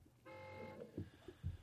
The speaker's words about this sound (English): That's my manager and my agent. So they're gonna honk the horn through the show?